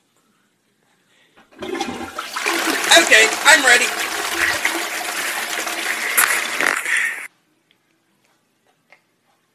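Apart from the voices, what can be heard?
toilet flushing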